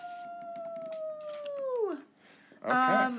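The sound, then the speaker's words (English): A person's voice imitates a coyote howl for the Coyotes sports team: a long, steady wail that slides down in pitch and fades, then a brief pause and a short, harsh yelping burst, fairly loud. “We've got, for my number 19, the Coyotes. Ow, ow, ow!”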